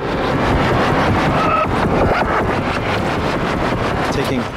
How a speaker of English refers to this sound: Okay, you are just, you're witnessing me really like this module. So on tonight's episode of Let's Meet a Module or whatever? Anyway, so this is the reverse reverb.